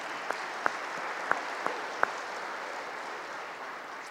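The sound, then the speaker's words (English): Scattered applause from an audience in a church, clapping for parents, a steady wash of clapping with a few sharper individual claps standing out early on. “So way to go, round of applause for parents too, right?”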